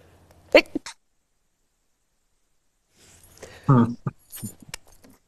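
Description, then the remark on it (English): A short burst of sneezing: one or two sharp sneezes, a pause of silence, then another cluster of explosive sneezes and sniffs in quick succession. “Come and save me here from my sneezing fit, okay?”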